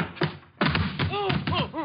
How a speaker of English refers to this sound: Hey, that was a pretty nifty tackle,